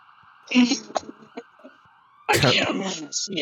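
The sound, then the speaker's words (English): An emergency vehicle siren wails steadily through the whole stretch, with muffled voices and a few sharp bursts of noise rising over it. “Okay, I think I hear the sirens”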